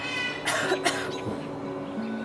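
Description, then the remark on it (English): A raven named Mischief imitates a human cough, producing two or three rough, raspy hacking bursts, with no talking around them. “So ravens are excellent at mimicking sounds they hear.”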